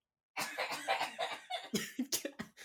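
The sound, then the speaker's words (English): A burst of breathy laughter quickly breaks down into a series of sharp, rough coughs, loud and rhythmic, with no talking. “That just evolved into coughing.”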